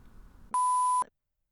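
An electronic meter gives one loud, steady, mid-pitched beep lasting about half a second, with a click at its start and end, after a low murmur of background noise.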